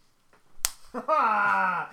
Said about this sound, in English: If you don't hear us shaking hands right now, we are.